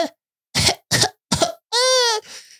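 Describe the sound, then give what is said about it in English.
Three short, wet, raspy, mucusy coughs from an infant of nearly 11 months, in quick succession and fairly loud, followed by a brief high-pitched whimpering cry that trails off into a breathy sound. “And he got, you know, it was kind of a mucusy cough.”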